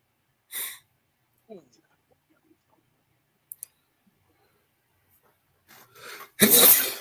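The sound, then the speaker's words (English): A loud sneeze bursts out near the end after a short breathy buildup. An earlier, smaller puff and a few faint clicks break an otherwise quiet stretch. “Bless you.”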